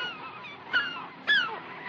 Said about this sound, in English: The birds. The birds!